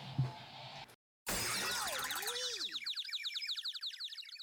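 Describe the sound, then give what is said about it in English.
An electronic alarm, set for 12:01 a.m., goes off in another room playing a marching-band novelty tune like the Boomer Sooner theme: a sudden crashing burst and a swooping boing-like tone, then a fast, repeating pattern of high warbling chirps that stays fairly loud. “Okay, so we just lost our train of thought because some fucking alarm just went off in the other room.”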